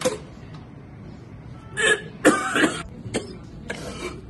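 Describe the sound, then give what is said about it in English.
A toy fart gun, the fart launcher 300, fired outside a studio, lets out a run of short, raspy fart noises, four or five sputtering bursts in quick succession, moderately loud, with no talking. “Unleash the fart gun.”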